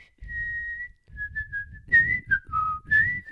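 A person whistles a short tune: a long steady note, then several shorter notes that slide up and down in pitch, clear and fairly loud over a breathy, rumbling undertone.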